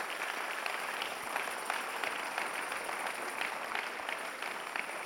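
An audience applauds steadily for Jesus, many hands clapping in a dense, continuous patter that holds at an even level throughout with no voices standing out.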